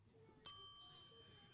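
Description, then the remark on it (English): A single bright bell ding rings out sharply at a vintage baseball game to mark a pitch, its clear metallic tone lingering and slowly fading over the following second, with faint background murmur beneath. “There's a bell to represent the first pitch.”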